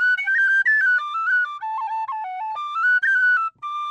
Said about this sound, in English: I suppose your tin whistle gets a little extra workout on St. Patrick's Day.